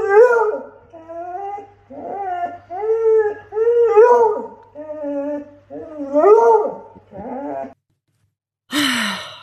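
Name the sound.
dog howling and whimpering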